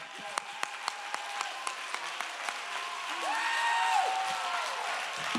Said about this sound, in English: Oh, clap your hands, all ye people, and shout unto God with a voice of triumph.